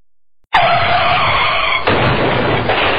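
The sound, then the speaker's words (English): Loud, sustained screech of car tires skidding, a car accident sound effect, starting abruptly after a brief silence and continuing harshly for about two and a half seconds, unaccompanied by voices. “Nobody wants to be in a car accident, but it can happen to even the most careful drivers.”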